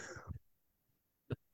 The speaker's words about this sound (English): we come back to you sneezing.